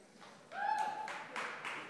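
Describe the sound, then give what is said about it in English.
At a gathering celebrating Pentecost, an audience starts clapping in moderate, uneven bursts, with a sustained high-pitched whoop rising over the first part of the applause. “Wait, we're clapping already.”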